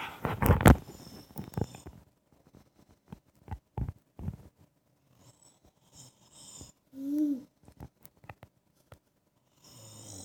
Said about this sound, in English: It's not funny. I'm just like... That's Daddy snoring. Oh, silly Daddy.